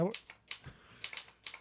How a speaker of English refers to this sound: And I'm very impressed you still have your like original brother typewriter, no less. Yeah. Yes, the original, the one I was raised on.